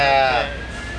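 The siren of a passing fire truck wails loudly, its bright harmonic tone sliding downward in pitch over about a second, with a low rumble beneath it.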